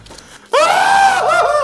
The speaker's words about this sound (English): Can I please insert that one clip of … screaming, pretending that she's screaming in her sleep, please?